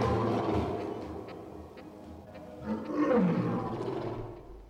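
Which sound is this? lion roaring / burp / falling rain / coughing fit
lion roaring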